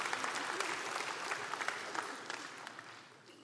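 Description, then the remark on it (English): An audience applauds with dense, steady clapping that holds at a fairly even level, then gradually thins and fades over a few seconds. No voices stand out over the applause. “I thought you should have clapped right there.”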